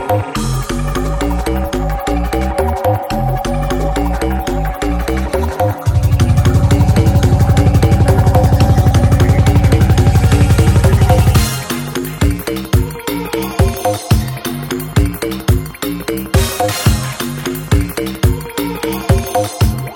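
A loud, brand-new music track from a newly released album plays with steady, punchy beats and repeating melodic lines, swelling into a dense, bass-heavy stretch midway before the rhythmic pattern returns; no one speaks over it.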